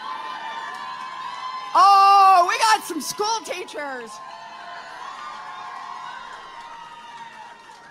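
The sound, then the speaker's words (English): A crowd with school teachers in it erupts in loud, high-pitched whoops and cheers for about two seconds, the shrill voices sliding up and down, then settles back into a steady murmur while a man speaks. “Rowdy crowd when you got school teachers in them.”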